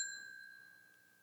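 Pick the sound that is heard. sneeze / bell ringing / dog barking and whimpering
bell ringing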